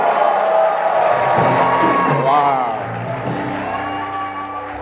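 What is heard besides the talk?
audience applause and cheering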